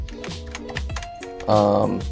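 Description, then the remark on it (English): Scattered sharp computer keyboard clicks from someone working tap out an irregular rhythm, mixed with a steady tonal hum of voices or music that swells louder toward the end. “Minus the clicking of my work here.”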